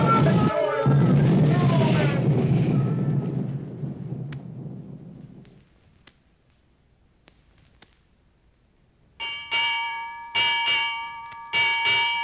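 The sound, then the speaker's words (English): A ship's bell rings out in quick pairs of clear, ringing strikes, six in all, following a fading roar of a rumbling, crashing tidal wave and a few faint knocks. “Six bells and all's well.”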